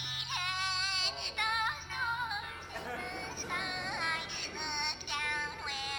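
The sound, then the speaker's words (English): A musical picture book, held up to the microphone, plays a tinny, low-quality recorded song through its small speaker, loud, with a warbling, distorted melody running continuously and no one talking over it. “It's like the worst recording ever. I'll put it up to the mic.”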